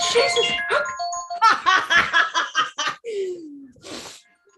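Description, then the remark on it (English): A phone rings with a bright, melodic electronic chime of steady tones, then a run of rhythmic laughing bursts, a short falling tone and a brief breathy burst follow. “My phone's ringing.”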